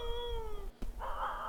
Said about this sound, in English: That sounds like a dude like making a wolf noise. But imagine that, but like 10 or 15 of them.